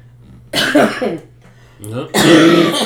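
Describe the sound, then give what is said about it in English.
Two harsh, throaty coughs, the first around half a second in and a louder, raspier one near the end, with a low steady hum underneath. “Cough number two.”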